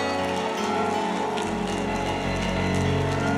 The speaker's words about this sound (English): Clap your hands to the Lord, everybody. Come on, give him a good Alaska hand clap.